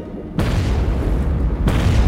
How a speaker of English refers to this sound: One skipper tried the unauthorized and reckless tactic of dropping grenades on the sub.